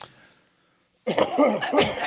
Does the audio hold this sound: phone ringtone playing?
no